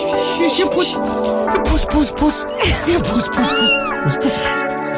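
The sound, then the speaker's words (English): A domestic cat wearing a red Santa ribbon and a little Christmas hat meows over and over on Christmas Eve, loud, its rising-and-falling cries coming in quick succession with a steady hum underneath. “We've got a whole bunch of presents for the cat.”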